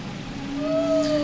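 A haunting whale song played from an old cassette tape player: long, sustained tonal calls slowly bending in pitch over a low, murky rumble, with no voices present.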